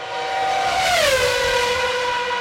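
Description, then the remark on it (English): A loud car engine roars past on the Salisbury Ring Road in traffic, its droning tone sliding down in pitch midway as it goes by, steady and continuous for a couple of seconds with no voices. “So anyway, there was quite a lot of traffic noise in our conversation,”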